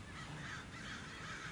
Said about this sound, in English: Oh my God. It's a murder of crows. They're all willy-nilly though. Are they riding the wind? What are they doing?